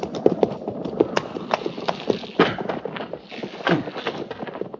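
The hooves of a mounted patrol's horses clop on hard ground as the patrol halts, in a quick, uneven run of sharp strikes, moderately loud, over a low background rumble.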